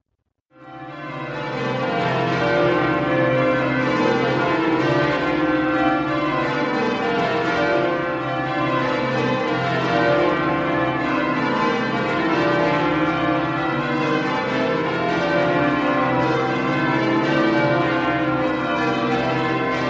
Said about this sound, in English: This heavy ring of bells is in a very picturesque location. How many are there?